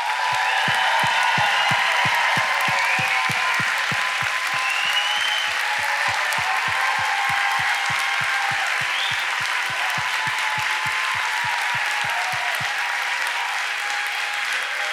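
A large church audience claps loudly and steadily for the whole stretch in honour of its pastors, with occasional whistles, cheers and hollering on top and a regular low thump pulsing beneath the applause.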